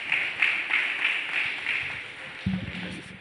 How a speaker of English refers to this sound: Let's give a round of applause to God.